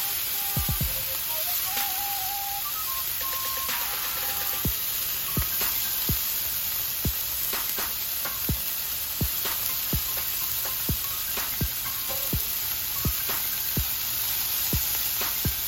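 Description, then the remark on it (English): Steak sears in a hot pan with a steady sizzle, a dense hiss broken by scattered sharp pops and crackles throughout, with no one talking. “And then you start to hear the water content, right? Sizzle down, relax.”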